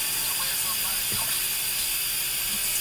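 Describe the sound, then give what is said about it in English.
A shower runs steadily, giving a constant bright hiss of spraying water that stays even and unbroken throughout, with only faint low thumps beneath it. “Music might be too much with the shower running.”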